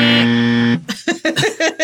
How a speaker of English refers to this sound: Play the buzzer sound here.